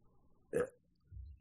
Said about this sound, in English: Did he burp at the end? No, that was me. That was me.